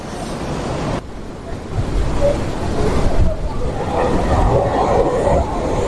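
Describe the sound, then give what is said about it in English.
Ocean waves break and wash onto the shore in a steady, broad roar of surf that swells louder midway through, with a brief dip just before it builds again. “Let's take a look at the waves for a second.”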